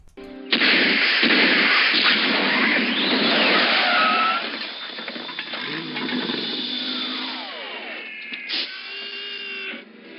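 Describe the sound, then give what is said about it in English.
A DeLorean crashes into a pile of recyclable metal cans in a driveway: a loud burst of clattering, then cans clink and ring while an engine whines and sweeps in pitch, ending with a few scattered rattles. “I made sure I got when the DeLorean crashed into the recyclables. So the cans go flying. You hear them clinking in the fucking driveway and shit when Doc Brown came in.”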